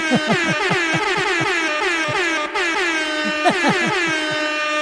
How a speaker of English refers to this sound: And to let you all know that the podcast is a success, I'm going to play more dub sirens.